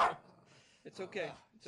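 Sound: dog barking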